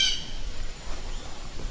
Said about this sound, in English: the sound of the blue jay